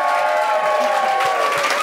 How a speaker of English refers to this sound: Folks, give a big round of applause.